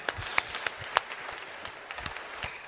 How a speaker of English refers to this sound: Yeah, we can clap for that.